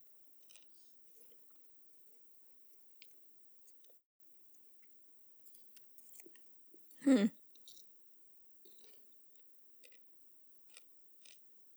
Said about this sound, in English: Sorry if you guys can hear us chewing. I know, I'm eating a lot of popcorn.